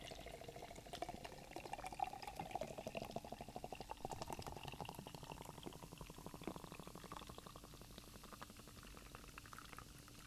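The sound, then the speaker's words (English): Beer pours and foams in a steady fizzing rush, a dense crackle of bubbles that holds for about ten seconds and slowly thins toward the end, with no voices. “Sorry, it was pour spilling hard.”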